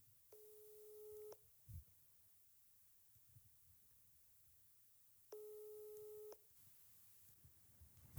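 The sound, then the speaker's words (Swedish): A telephone ringback tone sounds twice, each a steady one-second electronic hum separated by a long silent pause, heard clearly as if through a phone earpiece with no one talking. “Det ringer av allt.”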